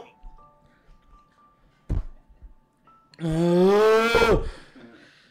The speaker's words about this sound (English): Oh, gulp. Incoming gulp.